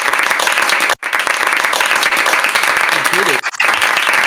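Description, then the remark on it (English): Loud, steady applause from a crowd, dense rapid clapping filling the whole stretch, with a brief dip near the start and another near the end, and a faint voice-like tone briefly rising beneath it. “I think it's time for some applause”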